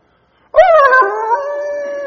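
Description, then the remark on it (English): A person imitates their dog's odd half-howl, half-cry, neither like a wolf nor a bark: one loud, wavering whine that starts abruptly and holds for about a second and a half, slightly sliding in pitch. “my dog started to make this really weird howly sound that I've never...”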